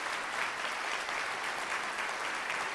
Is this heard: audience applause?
yes